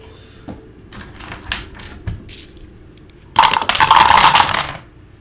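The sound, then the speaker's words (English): A few light clicks and taps, then a loud rattle of six-sided dice tumbling and clattering across a hard table for about a second before settling. No one speaks. “That's six-sided dice, because three-sided dice per antenna.”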